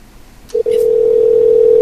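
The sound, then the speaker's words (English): A phone line clicks open with a short blip as someone calls a man, then a steady, unbroken dial tone hums loudly and continuously to the end, with no voices. “I think we should call him and ask him if we can go to disc golf with him.”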